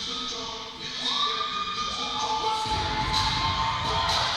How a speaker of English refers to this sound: The crowd is going wild. Big energy from the LA Municipal Dance Squad, LA's only Municipal Dance Squad.